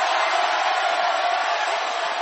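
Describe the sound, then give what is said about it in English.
A crowd cheers and claps loudly in a dense, continuous wash of noise, with voices shouting together for a couple of seconds and no single speaker standing out. “Thank you for your claps and your shouts.”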